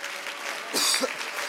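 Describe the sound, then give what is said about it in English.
An audience stands and claps their hands to the Lord in praise, a dense, steady patter of many hands with a brief louder swell partway through and a faint voice murmuring underneath. “Let's stand to our feet and clap our hands to the Lord all together.”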